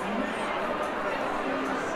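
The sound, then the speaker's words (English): A crowd of runners chattering before the start of a 5K and 10K race: a dense, steady murmur of many overlapping voices with no single speaker standing out, holding an even, moderate loudness throughout. “So the crowd is thickening up.”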